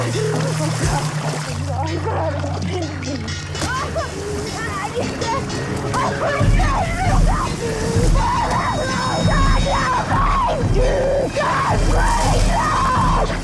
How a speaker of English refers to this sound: She gets thrown up against the buoy that's out there, and she's screaming and, you know, just blood-curdling scream, and then she gets officially pulled under and...